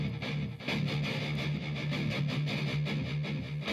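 Dense, loud music with three effects, including echo and heavy fuzzy distortion, pulsing in a steady rhythm with a droning low note throughout and no voices.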